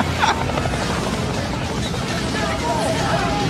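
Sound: helicopter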